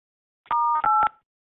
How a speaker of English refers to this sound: During the silent transfer, you may hear beeps. Please stay on the line as your call is transferred to the next available VCL responder.